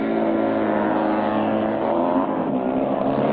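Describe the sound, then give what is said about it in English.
A motorcycle engine roars steadily and loud, its pitch holding high and harmonic as the rider accelerates up a ramp and over trucks in a ring, a sustained rev with no voices over it. “He speeds up the ramp and over the trucks, landing easily on the ground, and heads out of the ring.”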